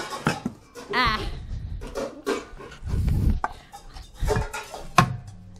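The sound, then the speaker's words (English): Pots and dishes bang and clatter in a kitchen while eggs and oil are put in a bowl for a recipe: a string of irregular knocks, clinks and dull thuds of moderate loudness, with bits of voice mixed in. “You hear me banging around my kitchen.”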